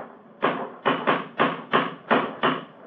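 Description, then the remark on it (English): A cane strikes a chipped stone bridge parapet seven times in quick, slightly uneven succession, each hit a sharp, hard knock with a brief ringing decay. No one speaks. “It's a hard knock.”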